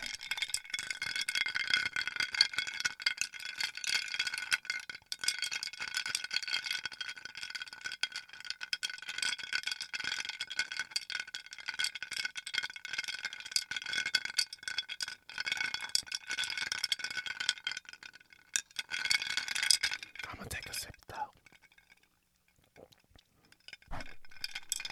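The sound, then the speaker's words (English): A metal straw stirs chunky ice cubes inside a glass mason jar, producing a continuous rapid rattling and clinking of cubes against glass for about twenty seconds, fairly loud, then a few isolated clinks. “Stirring with a metal straw and a glass mason jar, because you know, save the turtles and save the environment, okay?”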